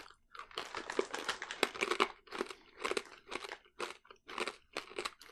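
Loud crunching of coated nut snacks, like a peanut inside a macadamia, being chewed, with repeated bursts of crisp crackling in an irregular chewing rhythm and no talking.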